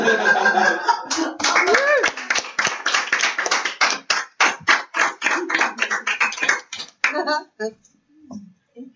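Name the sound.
audience clapping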